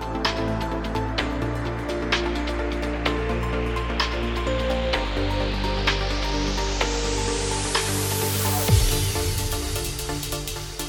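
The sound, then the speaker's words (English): A white noise sweep rises steadily in brightness for about eight seconds over a looping electronic beat, then cuts off abruptly into a deep, booming drop. “White noise, just a simple white noise sweep is always great.”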